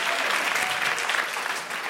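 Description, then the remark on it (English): A crowd applauds a correct answer in a trivia quiz, a dense wash of many hands clapping steadily at an even, fairly loud level throughout, with no clear pauses or individual claps standing out. “You can applaud that.”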